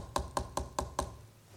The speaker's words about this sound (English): You see, Jesus is outside the door of the church. He's knocking on the door.